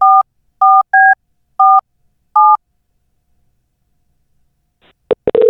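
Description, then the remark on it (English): Five short two-tone keypad beeps sound in an uneven rhythm, each a clean electronic chirp, followed by a few seconds of silence and then some abrupt clicks and a burst of noise. A phone number is being dialed to call the Glenn Beck program. “Did you call the right number? What is it, 888-727-BECK?”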